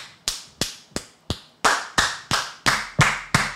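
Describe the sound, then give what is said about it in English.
A steady series of about ten sharp hand claps, evenly spaced in a brisk rhythm, growing louder and fuller partway through, with no voices. “The rooms have to be far enough that if someone is clapping very loud, no one else can hear it.”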